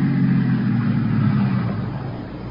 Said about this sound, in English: there's a car out there. It's been following me for the last 200 miles. Yeah? How'd you know? I know it. I took a side road. He did, too. I tried to duck him, and he hung on. He kept following me. I'm sure that... Listen, that must be it now.